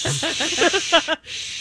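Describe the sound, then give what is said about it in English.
An angry cat hisses sharply, a harsh breathy spit mixed with low growling tones, lasting just over a second before cutting off into quiet. “Pet the kitty. Pet the kitty. Pet the kitty. Yep. Good, good kitty.”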